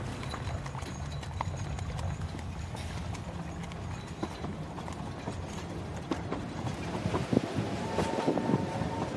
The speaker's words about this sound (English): We've got London Bridge, we've got the old trains coming to London Bridge now behind us.